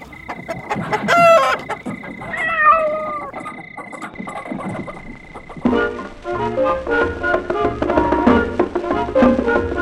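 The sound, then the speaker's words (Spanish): Chickens cluck and a rooster crows in a burst of lively fowl calls, then upbeat music with rhythmic instruments comes in around the sixth second. “mejor ponga a bailar a las gallinas!”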